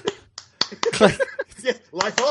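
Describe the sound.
Several sharp finger snaps crack out in an irregular rhythm, interleaved with a person's voiced sounds and murmuring; the snaps are bright and crisp, about as loud as the voice.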